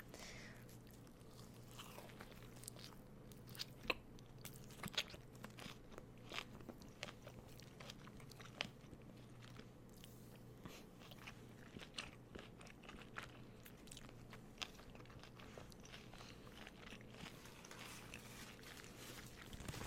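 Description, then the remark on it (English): Someone bites into and chews a crunchy biscuit, with a steady stream of sharp, crackly crunches at an irregular pace over a faint low hum, and no talking. “I'm going to get down and dirty with my food.”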